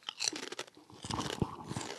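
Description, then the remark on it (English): Crisp, brittle crunching of Kettle potato chips being chewed, a quick run of sharp crackly bites followed by steadier, irregular munching, fairly loud with no talking. “I'm going to try kettle one again.”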